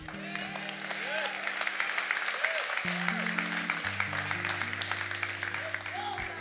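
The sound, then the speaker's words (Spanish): Steady audience applause, a dense wash of many hands clapping at once, holding a fairly even loudness throughout, with sustained low tones, likely music or organ, underneath. “¿Ustedes ven cómo va bajando el nivel de aplausos?”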